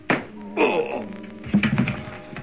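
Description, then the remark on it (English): Three dull, muffled blows from a bar of soap swung in a sock land at uneven intervals, each soft thump followed by low, strained groaning. “A bar of soap in the toe of a sock is as effective as it's safe.”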